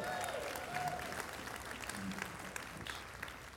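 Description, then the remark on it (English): A church audience gives the choir a round of applause at a morning service: a dense wash of many hands clapping at an even level throughout, with a few faint whistles or cheers rising briefly near the start. “Can we give that choir and Allison one more round of applause?”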